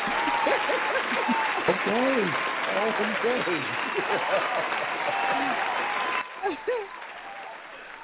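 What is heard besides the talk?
applause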